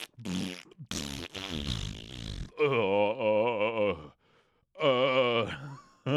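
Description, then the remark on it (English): A series of loud, buzzy, drawn-out fart noises, apparently made with the mouth, coming in several bursts, with wobbling pitch and short pauses between them. “Can everyone stop farting?”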